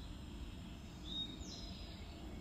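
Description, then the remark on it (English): Faint birds chirping: a couple of thin, high-pitched calls drift over a steady low ambient rumble, with no one speaking. “Thank you, birds.”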